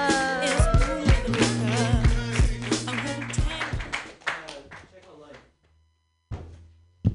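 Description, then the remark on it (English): An audience claps and cheers for a comedian, a dense burst of steady applause mixed with voices that thins out and fades, followed by a brief pause and a couple of short bursts. “Keep those hands clapping.”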